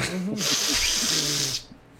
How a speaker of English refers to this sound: Gross. That was a big sniff.